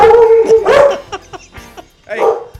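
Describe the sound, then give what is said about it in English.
A dog barks in a few loud, whiny outbursts, an opening drawn-out yelp followed by sharp barks, a pause, then one more bark near the end. “Which dog is it?”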